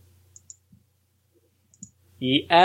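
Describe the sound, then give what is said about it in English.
Several soft, crisp computer mouse clicks in two quick pairs, spaced apart, before a person starts talking at the very end. “Sorry, I was already clicking on stuff.”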